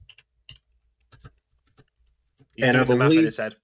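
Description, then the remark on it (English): Sparse, irregular keyboard taps click softly for a couple of seconds, a handful of separate keystrokes, before a man's voice comes in loudly. “you can hear me typing”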